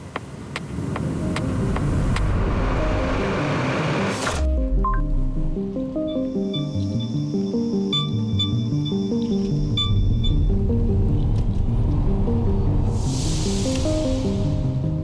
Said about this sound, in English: The sound of pure design. Polestar 2. The way electric cars should be.